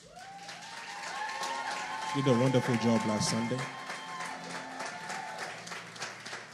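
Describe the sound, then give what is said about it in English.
Steady applause at a church sermon, a dense patter of many hands clapping in appreciation of a previous speaker, runs through the whole stretch while a man speaks over it, his voice rising briefly above the clapping. “So, with a clap of appreciation, let's please appreciate my sister”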